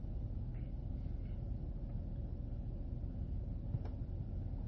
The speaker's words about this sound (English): That was a goddamn dump truck.